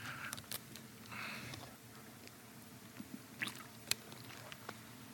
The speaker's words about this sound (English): I'm going to grab a water there, honey. You want to hand me that? Yeah, thanks.